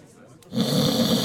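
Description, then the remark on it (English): After a brief quiet moment, a man at a bar gives a low rumbling snore that starts up and holds steady. It is fairly loud, with a raspy, breathy texture and no other voices. “You hear a low rumble, almost like a snore.”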